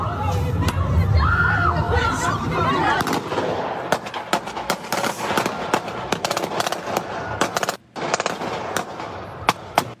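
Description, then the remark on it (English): Rapid bursts of automatic gunfire crack out again and again, loud, as a man slowly backing up fires into a crowd in downtown Chicago; the crowd's noisy voices fade as the shots keep coming. “He's slowly backing up and just letting off this automatic, like, into this crowd.”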